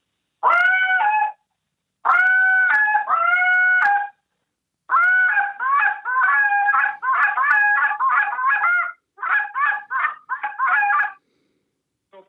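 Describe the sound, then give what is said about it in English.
A goose hail call blown on a goose call, as done in a goose call contest: a few long, drawn-out honks, then quick bursts of shorter, clipped honks in a rapid rhythm, loud with no talking. “So, I mean, I'm just going to give you this, like, you know, the hail call for the goose call in a goose call contest.”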